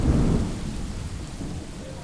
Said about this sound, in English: there's nothing festive about the weather. It's cold, it's dark, and it's lashing with rain. A huge band of electrical storms is rolling across Western Europe, and the skies are dancing with the crackle of lightning, accompanied by booming thunder.